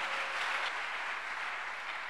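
A church conference audience claps steadily and densely for Jesus throughout, a continuous wash of many hands with no voices over it, holding an even, fairly loud level to the end.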